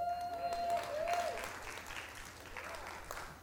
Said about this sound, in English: Some of your friends are in Vegas, I see. You guys are cheering for them.